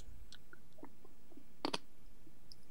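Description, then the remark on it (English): Two sharp, crisp crunches as someone bites into a small London porter chocolate, with a few faint clicks and mouth sounds around them in an otherwise quiet setting. “Oh, crunch. Nothing better but chocolate for breakfast.”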